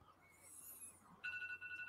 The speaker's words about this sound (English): But can you hear ringing in the background? I think my alarm's going. Yeah, it's coming from your end.